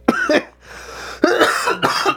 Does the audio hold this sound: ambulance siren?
no